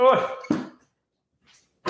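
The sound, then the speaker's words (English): A dog barks twice in quick, loud succession, then goes quiet for a moment before a third sharp bark cuts in at the very end. “My dog just started barking.”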